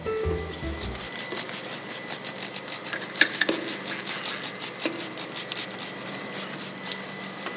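A 5-gallon plastic bucket of Orange Blossom honey from Mountaintop Honey Company in Flagstaff, to be made into mead, being opened: a steady run of scraping, rasping and creaking as the lid is worked loose, with a few sharper clicks and pops along the way. No one speaks.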